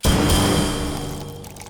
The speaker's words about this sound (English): Don't be stingy with that pour there. I need my fuel today.